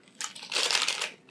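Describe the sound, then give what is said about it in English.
Someone bites into a dehydrated apple crisp, making a dry, crackly crunch that builds and lingers for about a second. It is bright and brittle, with no talking over it. “Dehydrated apple crisps. Ew. Is it like a chip? Yes. It's the apple that go crunch.”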